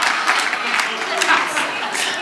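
A crowd of people clapping steadily, a dense, crackling patter of many hands that holds at an even, fairly loud level throughout without fading.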